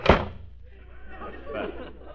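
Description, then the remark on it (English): A single loud slam at the start as a cash register drawer is shoved shut in a shop, followed by quieter room noise and faint indistinct voices in the background. “Close that cash register drawer.”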